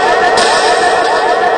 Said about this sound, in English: That was like a weird echoing sort of a... What are you doing? The thing that plugs into the board so the computer can play through the soundboard, it burnt out.